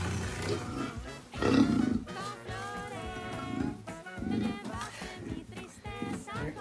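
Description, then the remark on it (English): A puma kept as a pet dog growls and snarls in a series of rough, raspy bursts, some rising into strained, tonal yowls, with a steady grumbling rumble between them over several seconds. “I mean, that dude has a puma for a dog, bro. Is that a puma?”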